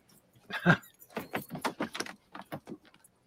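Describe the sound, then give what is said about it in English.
Boat keys jangle as they're handed over, a quick flurry of bright metallic clinks and rattles lasting a few seconds, fairly quiet, with no one speaking. “Give me the keys”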